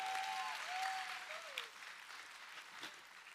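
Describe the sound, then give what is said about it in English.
Sustained applause from an audience clapping for five seconds when urged by a speaker, a dense wash of many hands clapping at once, steady for a few seconds with a faint whistle-like tone briefly riding above it. “Come on, you clap for 5 seconds.”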